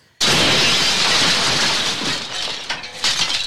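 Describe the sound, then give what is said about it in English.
The end of Clark's blue spruce Christmas tree smashes through a window on Christmas Eve: a sudden loud crash of breaking glass, followed by a few seconds of shards and debris tinkling and settling. No voices. “Behind them, the end of Clark's blue spruce crashes through their window.”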